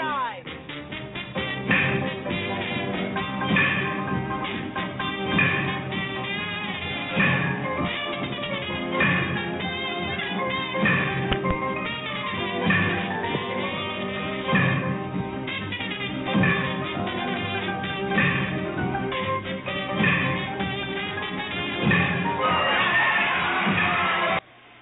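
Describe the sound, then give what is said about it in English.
A large crowd at a baseball game roars and shouts continuously for the whole stretch as a team goes up to bat, loud and dense, with voices swelling in repeated surges of cheering and yelling. “That crowd roared as the Gas House Gorillas go up to bat again.”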